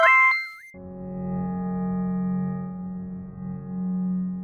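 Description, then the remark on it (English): A quick run of bright electronic phone dialing beeps that jump and slide in pitch as someone dials a phone to call a guest, followed by a steady, low, buzzing tone that holds for several seconds. “So I'm going to dial the space phone here, and let's see if he answers”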